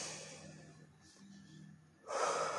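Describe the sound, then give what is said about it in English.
A slow, deep breath drawn in through the nose while incense is burning, followed by a strong, airy exhale that grows louder near the end, without any talking. “I got a little incense burning right now, you know, a little cleansing for my soul right now, breathing it in.”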